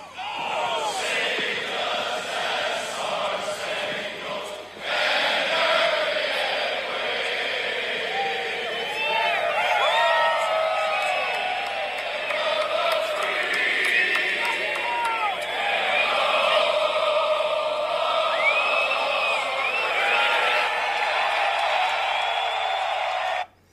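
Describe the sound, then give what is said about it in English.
A huge golf crowd at the Ryder Cup roars and cheers without letup at the first tee at Whistling Straits, loud and steady, with shrill whistles and whoops rising over the din before it cuts off abruptly. “That was recorded from the first tee out at Whistling Straits.”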